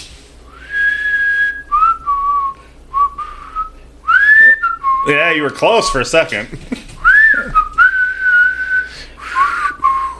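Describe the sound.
Someone whistles a slow, wavering tune in short sustained phrases, close and fairly loud, with a brief burst of talking and laughter breaking in midway before the whistling resumes.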